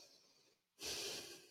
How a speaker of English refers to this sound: Well, don't get all fucking loud nose breathing with me.